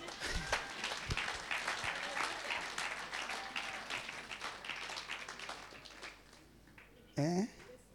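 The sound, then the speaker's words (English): An audience claps for Jesus steadily for several seconds, a dense crackle of many hands that slowly thins out, with a brief voice cutting in near the end. “Can you clap for Jesus?”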